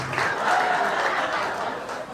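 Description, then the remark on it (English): A comedy show audience applauds itself, a dense, steady wash of many hands clapping at once that stays loud for the full two seconds and dips only slightly near the end. “Give it up for yourselves.”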